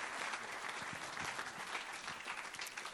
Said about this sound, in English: Let's give a big clap offering to Jesus.